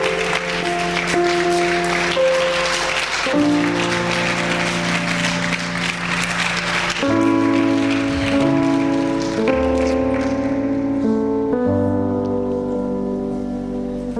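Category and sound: crowd, audience clapping hands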